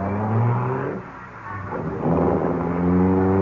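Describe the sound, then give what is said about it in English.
A car engine revs loudly, dips briefly, then roars again as the vehicle pulls away, with a steady harmonic drone through the whole stretch and no voices. “Now, get away from my car before I run you down.”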